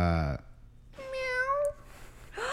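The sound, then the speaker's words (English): A person imitates a frightened cat, letting out one drawn-out, strained meow in the middle, with brief bursts of vocal sound just before and after it. “It's just the cat. See, he just and it is just it is a like meow.”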